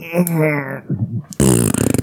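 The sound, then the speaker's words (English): A short, low, sputtering fart sound sits between bursts of loud, strained vocalizing, with a voice on either side of it. “Oh, it was a fart.”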